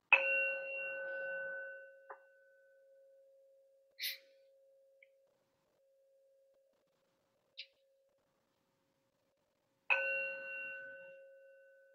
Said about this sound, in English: So settling in. Hearing the bell.